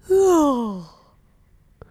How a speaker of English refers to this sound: Also, yawn also already. Can you hear the yawning?